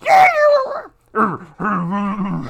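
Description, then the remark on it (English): A woman imitates a deep, drawn-out growl in three loud bursts: a rough falling snarl, a short grunt, then a longer rumbling growl held to the end. “She's got a really deep growl, doesn't she?”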